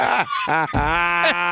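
A goat bleats, three loud, nasal, wavering cries in quick succession with no one talking.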